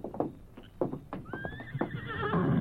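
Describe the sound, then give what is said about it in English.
A paint horse named Scout whinnies loudly with a rising, wavering neigh while hooves clop in an uneven rhythm, the sounds building toward the end. “Hey, that paint horse is a fine one, eh, amigos?”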